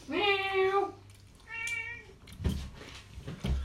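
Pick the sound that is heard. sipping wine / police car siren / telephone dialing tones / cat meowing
cat meowing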